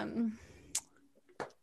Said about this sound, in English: Let me take another sip.